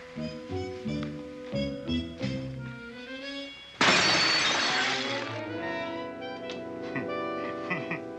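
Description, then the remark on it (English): A glass display case is smashed with a sudden loud, bright crash, followed by a few seconds of tinkling, ringing shards as debris settles. Brassy music plays before and after the break. “We'll have to break the case.”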